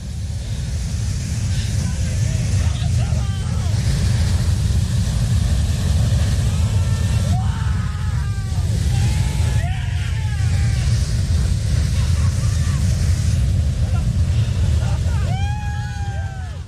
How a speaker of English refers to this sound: That's the sounds that I heard after waiting 14 hours to see a geyser erupt.